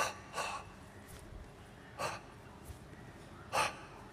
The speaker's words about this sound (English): In other words, breathing onto his hands, his fingers, infusing them with that healing energy, that prana, and then casting them onto her skin.